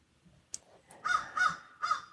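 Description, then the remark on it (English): A crow called Marvin caws several times outside, harsh repeated calls in a loose rhythm, fairly quiet, with a couple of brief clicks before the first call. “And you don't have to do anything right now, but listen to me and Marvin squawking out there.”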